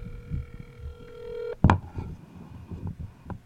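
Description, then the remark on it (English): Phone dialing tones for a call to Aaron Simon hold steady for about a second and a half, then cut off with a sharp, loud clunk followed by muffled handling rustles and faint clicks. “Let's call Aaron Simon. Call Aaron Simon.”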